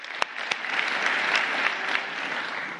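Steady applause from a sizable audience fills the room, a dense wash of clapping with a couple of sharp, loud claps standing out near the start, sustained throughout.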